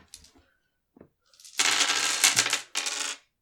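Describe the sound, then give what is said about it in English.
Six dice clatter onto a table in a loud, rattling burst, followed by a shorter second tumble, after a few soft clicks of the dice being handled; they come up two hourglasses, a skull, a moon and two diamonds. No one speaks. “I've rolled 6 dice.”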